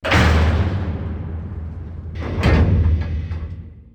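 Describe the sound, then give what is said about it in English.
A heavy metal cage door bursts open with a loud rumbling release, then grinds and clanks as it slides, a deep mechanical hum underneath, forceful, with no voices. “While everyone is arguing, She slowly turns and walks to the cage door release.”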